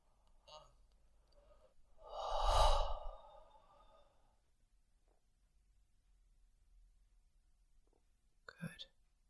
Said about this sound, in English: Breathing deeply into your lower belly. Actually, please breathe from your lower belly all the way up to the base of your sternum, that whole area.